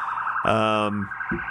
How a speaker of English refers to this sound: You hear those sirens?